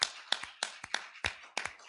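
A group claps their hands together in sharp, irregular bursts, the overlapping smacks forming a loose, uneven applause with no voices over it.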